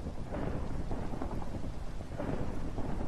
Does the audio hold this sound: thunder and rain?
yes